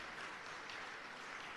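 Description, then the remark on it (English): Steady audience applause for a line dance artist and a singer before a full house in the morning, a dense wash of many hands clapping at an even, sustained level with no voices over it. “And once again, may I propose another huge round of applause for our line dance artist and our singer.”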